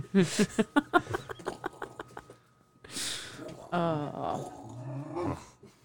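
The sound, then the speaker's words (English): A dog named Jericho lets out a rapid string of short, rhythmic growling barks, then pauses and follows with longer, grumbling, whine-like vocalizations. “has joined the conversation. Jericho, what do you think about all this? Dogs should be able to say the N-word.”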